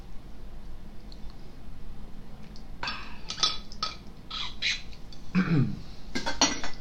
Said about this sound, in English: taking a sip of water.